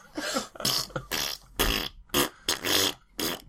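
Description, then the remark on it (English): A voice blows a string of loud, raspy fart noises, spaced into a stately marching tune of about seven pulses of varying length, with short gaps between. “I can't believe you're actually doing the imperial farts.”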